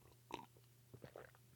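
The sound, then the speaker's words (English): A quiet sip of old coffee: a few short, wet slurping and mouth sounds spaced over a second or so, with no talking. “I'm going to have one more sip of it just to help wash everything down.”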